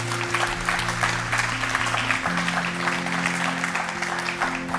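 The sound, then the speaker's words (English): An audience at a worship service breaks into steady, sustained applause for several seconds for those who have just prayed to follow Jesus, while soft sustained organ or keyboard chords hold underneath. “Will you give them a round of applause?”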